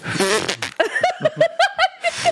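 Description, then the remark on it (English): A voice imitates an airy, breathy fart with a short hissing, sputtering burst, followed by a run of rhythmic laughter pulses. “Can I do an impression of what I think Brayden's farts are like?”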